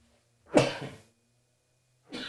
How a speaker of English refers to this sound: Pardon me. See, it's a funny thing, right? I talked about dust, and then I sneezed. There's no dust in the studio.